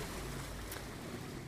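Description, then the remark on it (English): Gentle ocean waves lap near the shore in a steady, continuous wash of watery noise, fairly soft with a low rumble underneath and no voices. “I am sitting next to water. So the waves are a perfect example of this, right?”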